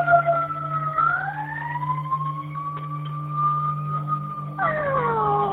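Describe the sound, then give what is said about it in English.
An ambulance siren wails steadily, its two-tone pitch sliding slowly up and down, with a low engine hum beneath and no talking. “Okay, see the ambulance?”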